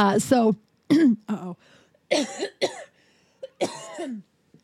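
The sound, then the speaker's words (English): A loud run of chesty, phlegmy coughs mixed with gravelly throat clearing, about half a dozen bursts in an uneven rhythm with short pauses between them. “I think that'll really help my chest if I can just get it, you know, get some coughing.”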